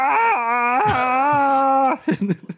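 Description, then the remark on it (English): A person imitates a screech with a sustained, strained, high-pitched voiced squeal held steady for about two seconds, dipping briefly once, then breaking into a few short choppy bursts. “I think more screech.”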